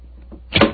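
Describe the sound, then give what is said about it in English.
A skeleton key rattles in an old door lock, unlocking the door: a couple of faint ticks, then a loud metallic clunk as the bolt turns. No voices. “Is the door locked? Yes, but I think the skeleton key will do the trick.”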